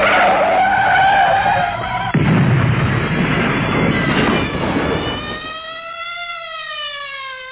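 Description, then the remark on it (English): A car's tires screech loudly in a long skid, then a heavy, noisy crash as it slams into a lamppost, followed by a wavering tonal whine that trails off. No voices. “I got my hands full driving the car. Look out, boss. The lamppost.”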